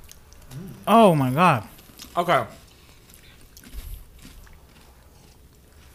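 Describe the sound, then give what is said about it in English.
Soft chewing of crunchy Biscoff cookies, fairly faint, with a person making appreciative murmurs and brief remarks before the quiet munching continues alone. “I mean, if you've had the cookie butter, it tastes like the cookie butter, just crunchy.”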